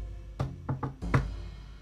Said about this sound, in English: That's when she looked at the clock and saw that it was 6. That's when she heard a knock at the pizzeria door.